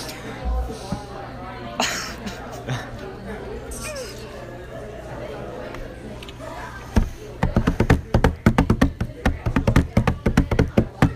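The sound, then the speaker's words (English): Murmured background chatter gives way to a quick burst of sharp hand claps in an uneven, song-like rhythm, clapping out the Danny Phantom theme song, about a dozen claps over the last few seconds. “Fucking clapping the Danny Phantom theme song?”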